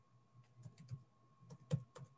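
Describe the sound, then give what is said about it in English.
Soft rustling and crinkling of paper being handled, a few short irregular scrapes and taps over about two seconds, with no talking. “Paper.”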